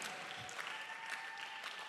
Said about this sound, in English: Oh, let's clap well.